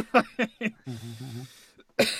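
human body sound, cough into the microphone

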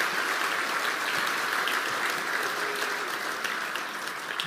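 crowd, audience round of applause

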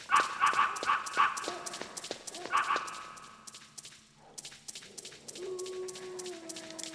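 animal, dog barking and yipping

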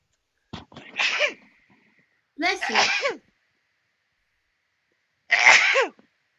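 human body sound, repeated sneezing

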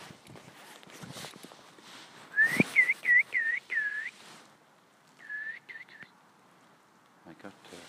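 human body sound, person whistling with lips

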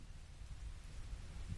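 nature, rain falling

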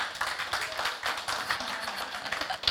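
crowd, audience member clapping

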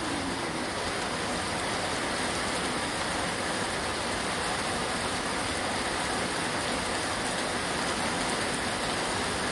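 nature, rain falling

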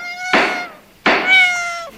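animal, cat meowing

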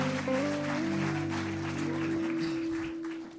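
crowd, audience applauding the band

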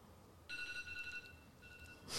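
signal or alarm, timer going off

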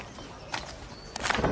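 animal, horse hooves clip-clopping

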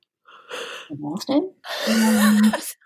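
human body sound, yawn

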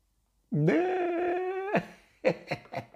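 animal, dog growling and whimpering

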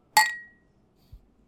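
household object, glasses clinking

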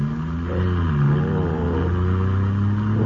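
vehicle, car engine running

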